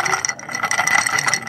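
ice clinking

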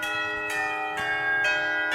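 bells ringing

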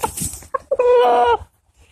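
pet chicken clucking

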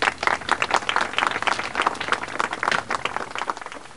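clapping applause

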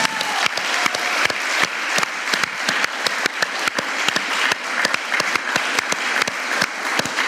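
audience clapping

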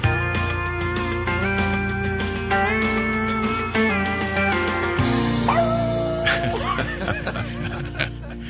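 dog barking and whimpering

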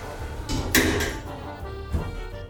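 elevator doors closing

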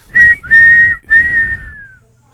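whistle being blown

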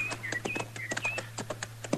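horse hooves clip-clopping

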